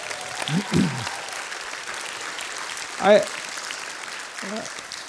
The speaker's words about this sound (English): Congratulations. Why don't you give her a round of applause?